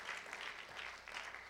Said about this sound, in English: If you're going to help me preach, why don't you clap your hands and be seated in Jesus' name.